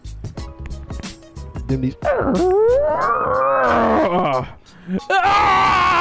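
A person lets out a loud, drawn-out strained groan while getting up, rising and wavering for a couple of seconds after brief chatter, then a second groan begins right after a short pause.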